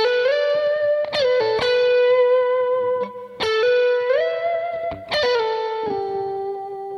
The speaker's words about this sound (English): moved through the scale horizontally on one string using hammer-ons and pull-offs and slides, and it sounded like this.